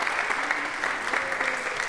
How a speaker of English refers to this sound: And we want to clap for you and thank you for coming.